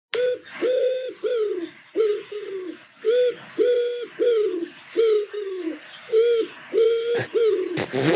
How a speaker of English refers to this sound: So that's a pigeon saying very clearly, obviously.